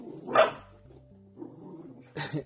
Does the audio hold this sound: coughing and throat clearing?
no